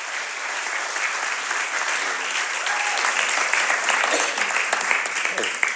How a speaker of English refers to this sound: why don't you give him a really big round of applause as he gets into the Word of God for us.